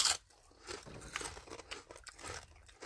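Crisp crunching of someone biting and chewing a chip, a burst of sharp crackles at the start followed by a steady run of irregular, brittle crunches. No one speaks.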